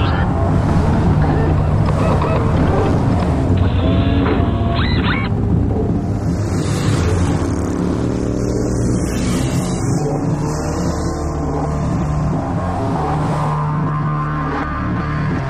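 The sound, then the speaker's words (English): A heavy mechanical rumble as a giant door opens outside a truck, then two motorcycles start and rev, their tone rising and shifting as they drive off ahead of a convoy under a steady, loud, windy roar. “Outside the truck, a giant door opens, and two motorcycles start and drive ahead of the convoy.”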